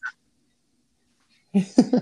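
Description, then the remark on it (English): Guinea fowl call loudly at sunrise: a brief sharp cry, a pause, then a cluster of three harsh, raspy squawks in quick succession. “Boy, your guineas are going crazy, huh?”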